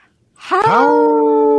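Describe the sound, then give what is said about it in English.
Two people's voices imitate a wolf howl, rising from a low swoop into a loud, steady, harmonic tone that holds strong until the end. “Sounds pretty good for two people howling there”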